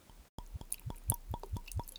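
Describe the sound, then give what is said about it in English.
Buffalo Trace bourbon glugs from a bottle into a glass in a quick, steady series of wet, hollow gulps, fairly quiet, with no voices. “And while I do that, I'm going to enjoy a bit of Buffalo Trace Bourbon. So we'll get a pour.”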